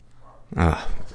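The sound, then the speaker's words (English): A female dog lets out a single sharp, loud bark, with low background noise before and after it. “It's like she waits until I start recording to bark.”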